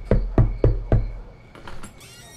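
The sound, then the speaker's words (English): Four firm, evenly spaced knocks on a wooden house door on a Friday night, resonant with a low thud, followed by a few faint rustling sounds. “Isaac found the scent too tempting to ignore, and he knocked on Ruthie's door.”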